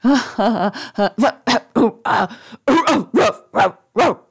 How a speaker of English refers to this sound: The prince laughed again so hard that he had an unexpected fit of barking.